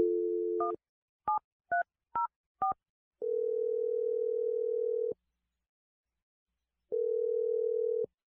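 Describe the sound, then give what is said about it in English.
A steady telephone dial tone, then five quick touch-tone key beeps as a phone number is dialed for a call from the radio show Brooke and Jeffrey in the Morning, followed by two long ringback tones separated by a pause. Clear, with no one talking. “We're going to dial Eric's phone number right now.”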